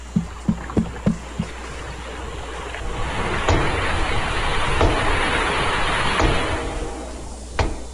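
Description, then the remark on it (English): Underwater banging heard by searchers, recurring about every 30 minutes: a quick run of five hollow knocks, then a long washing rush of noise broken by a few sharp isolated bangs and a final loud knock. No one speaks. “Now, the sounds that they heard, they were talking about banging every 30 minutes or so. And this is essentially what they're hearing.”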